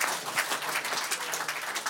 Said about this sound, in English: All right, ladies and gentlemen, a round of applause, please, for Mr. Eddie Jones.